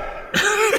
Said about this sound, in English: Excuse me while I cough.